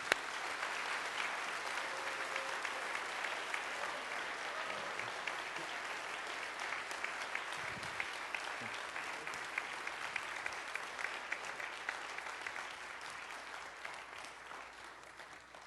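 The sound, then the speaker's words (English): A large audience applauds steadily for about fifteen seconds, a dense wash of many hands clapping that holds fairly even before easing off slightly toward the end. “Why don't you give them all a round of applause?”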